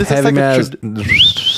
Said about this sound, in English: How about whistling indoors? I heard of whistling outdoors. Whistling outdoors is not a good thing.